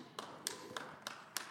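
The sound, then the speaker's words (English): Five sharp hand claps during an Easter sermon, in a steady, even rhythm, each about a third of a second apart, sounding faint with no talking over them. “You can get excited and clap your hands on Easter.”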